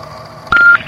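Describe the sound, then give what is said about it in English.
From a taped recording of a 911 emergency call: a single steady electronic dialing tone sounds for about a quarter second after a low background hum, then cuts off, leaving the faint hum of the recorded phone line. “We've got his 911 calls on tape here. Let me just play it.”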